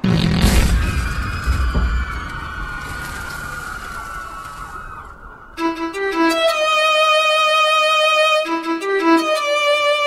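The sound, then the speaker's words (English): A loud methane explosion, ignited by sparks from a boat crash, bursts at the start and rumbles away for several seconds, then wailing siren-like electronic tones take over and hold steady to the end. No one speaks. “And suddenly, the smelliest explosion in the history of explosions erupts.”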